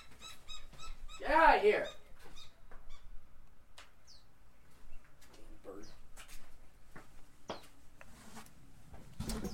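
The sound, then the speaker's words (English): A bird calls loudly right beside the microphone with a single harsh, drawn-out cry near the start, followed by scattered softer chirps, rustles and knocks as it is shooed away. “Hang on, I'm going to scare this bird away.”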